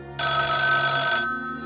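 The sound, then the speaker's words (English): A telephone bell rings once in a loud, bright burst lasting about a second, then cuts off abruptly, leaving a faint hum behind. No one speaks. “However, right when you see that, you hear telephone ringing.”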